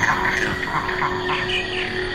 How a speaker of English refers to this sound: No, it is very, very noisy. It's a din. It's just this kind of sonic chaos. All these insects and birds and bats and mammals, it's almost as if they compete for acoustic space.